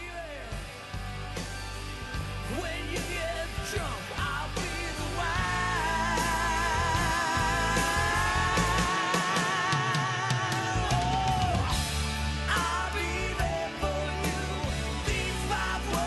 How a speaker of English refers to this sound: Oh, you need to hear the scream?